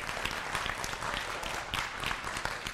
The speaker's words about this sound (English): Yes, can we get a big clap offering for Jesus?